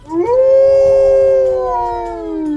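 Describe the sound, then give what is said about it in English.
A single she-wolf howls in one long, sustained note that rises quickly at the start and slowly sinks, loud, with no talking. “However, a she-wolf found them.”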